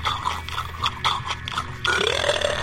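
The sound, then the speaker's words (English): A long, rumbling burp from a man, with a rough, gurgling texture, fairly loud, rising into a strained, drawn-out finish with no other sounds around it. “He burps during the show and he times it.”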